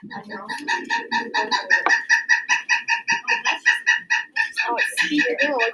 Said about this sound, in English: So that is a pileated woodpecker call? So you can hear that. They have lots of calls. So that is a distinct drum. I mean, a lot of people identify with woodpeckers by the different echoes that the drum makes. That's a pileated woodpecker call.